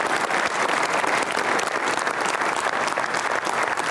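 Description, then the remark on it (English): Steady, dense applause from an audience, a continuous wash of many hands clapping at a fairly loud, even level with no voices standing out. “Yes, a round of applause”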